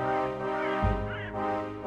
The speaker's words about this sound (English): Boy, I feel like this crow's getting quieter. As the music builds and crescendos, the crow is just muted.